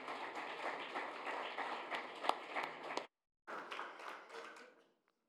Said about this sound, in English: So let's give a round of applause, please, for Sekou.